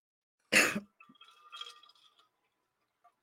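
A person takes a sip of a drink: a single short, wet slurp or gulp, followed by a second or so of faint, light clinking with thin ringing tones, then quiet. No one speaks.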